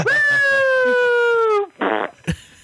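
A long, loud, buzzing fart at the end of a voicemail, with a steady tone that slowly sinks in pitch, followed by a couple of short, raspy sputters at the end. No one speaks.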